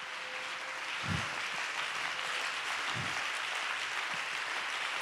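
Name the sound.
audience clapping hands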